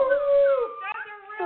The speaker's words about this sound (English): That's a real dog.